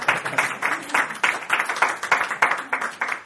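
An audience in a small church applauds steadily as a speaker comes up to the podium, a dense wash of many hands clapping at once with a loose, pulsing rhythm, sustained for a few seconds.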